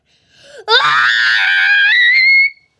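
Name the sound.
voice imitating a monkey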